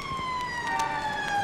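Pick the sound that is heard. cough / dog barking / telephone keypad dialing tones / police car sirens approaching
police car sirens approaching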